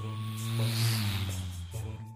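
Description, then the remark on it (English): A voice imitates an ordinary car engine with a steady, buzzing hum that swells in the middle and drops slightly in pitch near the end, fairly loud, with no talking. “How about a normal car?”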